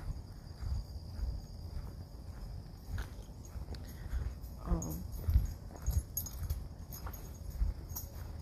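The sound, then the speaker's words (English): Metal bangles jangle in quick, irregular clinks alongside soft footsteps as a woman wearing many bangles walks past, the jingling peaking midway and then fading, with low background rumble throughout. “By the way, that wasn't a dog that just walked past us. It was a woman with all the bangles and shit.”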